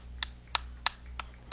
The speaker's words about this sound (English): Man, you can hear my claps in the headphones.